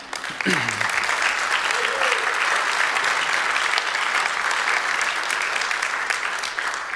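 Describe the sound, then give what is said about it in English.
A large audience breaks into sustained applause for members of a weaving group who were asked to stand, a dense, steady wash of clapping that fills the whole stretch at full volume, with a brief voice audible near the start. “Okay, now you didn't have a cue to clap yet, but that's okay.”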